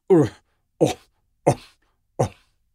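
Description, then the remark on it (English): A voice imitates a lion with four deep, huffing coughs, evenly spaced, each a short forceful grunt that fades quickly into silence, lions calling from the open plain beyond the trees. “And now, off somewhere in the open plain beyond the trees, now at last the lions begin. A deep, huffing cough. Roar! Roar!”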